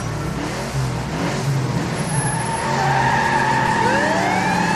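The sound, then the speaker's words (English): A car engine revs loudly and speeds off, its pitch climbing steadily through the second half as it accelerates at full throttle, driving to a secret airfield 50 kilometers away. No one speaks. “Back to the car! Pedal to the metal, Really Cool Cat!”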